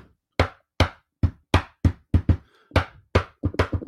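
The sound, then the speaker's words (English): A series of sharp knocks on a hard wooden table, struck in a syncopated rhythmic beat with short pauses and a quick flurry at the end. No voices. “that's the way I used to knock on the door to get into apartments in the projects.”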